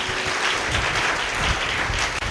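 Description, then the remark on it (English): An audience at a church service applauds the choir, steady dense clapping from a large crowd filling the space for a couple of seconds, with no voices standing out. “Can we clap again for the choir?”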